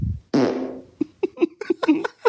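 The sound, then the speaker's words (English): A long, loud fart rumbles out with a roomy bathroom echo, then breaks into a sputtering series of short pops and puffs that trail off unevenly. “This next one was in the bathroom, so you'll hear a little echo for this one.”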